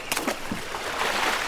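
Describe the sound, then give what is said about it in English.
A canoe oar dips into the water on the right side of the canoe with a few quick splashy strokes, swung backwards to move the canoe forward, followed by a soft, steady rush of water swirling past. No one speaks. “Dip the oar into the water, and then quickly swing it backwards to move the canoe forward.”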